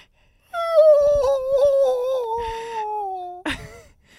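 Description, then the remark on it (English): A voice imitates a crying bird, made like a reverse whistle by pushing air out while breathing through the diaphragm: a long, high, wavering whine that slowly slides downward for about three seconds, ending in a short breathy burst. “like a crying bird.”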